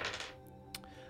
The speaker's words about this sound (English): So, I'm going to go ahead and roll a d6 to just see how many dudes are on the other side of this house.